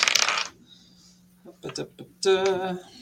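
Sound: dice being rolled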